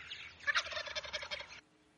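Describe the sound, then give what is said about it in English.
A single loud wild turkey gobble, a rapid rattling burst of throaty notes lasting over a second, heard clearly with no talking, then quiet. “That gobble sound is heaven, and it just makes your blood pump.”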